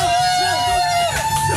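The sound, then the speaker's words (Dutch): An outdoor crowd at the Lowlands festival grounds cheers and applauds when a host calls for applause, a loud, dense wash of clapping and raised voices that carries on steadily for a couple of seconds. “Mensen buiten, applaus!”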